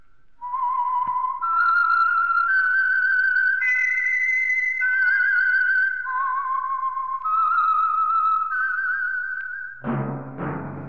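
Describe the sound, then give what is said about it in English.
A lone whistler carries a slow, melancholy melody of sustained, gliding notes for about ten seconds as a radio program's signature tune, clear, before a brief burst of sound cuts in at the end. “That whistle is your signal for the Signal Oil Program, the Whistler.”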